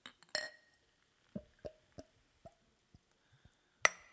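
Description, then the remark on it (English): Beer from Upper Hand Brewery glugging from a bottle into a glass after the top is popped: a bright clink, then a string of hollow, irregular plops that gradually slow, capped by a sharp glassy tap at the end. “And I'm going to pour this into a glass so we can get a good look at it.”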